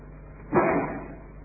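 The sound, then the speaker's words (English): A single sneeze, a short, sharp burst of breathy noise that fades quickly, heard on its own over faint background hiss with no talking. “Bless you.”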